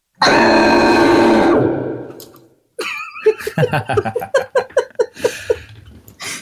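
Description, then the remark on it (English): A scream comes out as a loud, booming, monstrous roar that reverberates and echoes through a lab, holding for over a second before trailing off, followed by a burst of choppy, rhythmic laughter. “And what comes out is this like a giant, enormous, booming, almost like monstrous roar that reverberates and echoes and like vibrates this entire lab, and like the beakers that are sitting on tables like shudder and fall off,”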